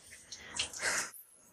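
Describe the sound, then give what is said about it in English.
A short, fairly quiet burst of shower water hisses and splashes onto a person's open hands for about half a second, then cuts off abruptly. No one speaks. “Receive the water, have my hands open to receiving it.”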